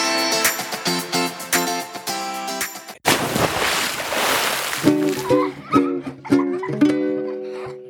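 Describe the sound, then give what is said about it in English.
A loud, rushing water splash bursts out for about two seconds between bright, bouncy musical phrases, the jingle picking back up right after the spray fades. “Ready, set, splash.”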